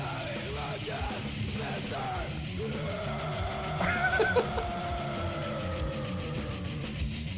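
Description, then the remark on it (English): Christian death metal with harsh, screamed vocals over a dense, distorted backing that stays loud and continuous, the screaming rising into a strained howl about halfway through. “Yeah, I would describe this as Christian death metal.”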